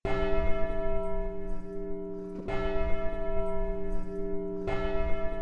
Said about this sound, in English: And once the restoration was complete, the church bell rang once again on Reformation Sunday.